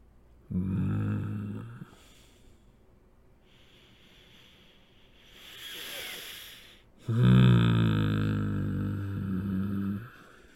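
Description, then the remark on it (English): A voice imitates loud snoring: two long, deep, rattling inhales separated by a softer breathy exhale, forceful with no words spoken. “was snoring”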